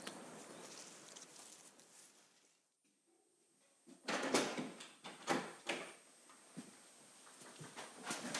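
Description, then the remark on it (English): A heavy studded wooden church door in a porch is unlatched and swung open, with a few loud clunks and knocks following a brief hush, then creaks and scrapes against a faint background hiss. No one speaks. “So we'll pass through the portal of the porch, past that wonderful studded door, and you can reveal the interior to us,”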